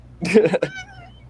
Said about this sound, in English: Was that your cat? My cat just decided to join the pod. Say what's up, Pen.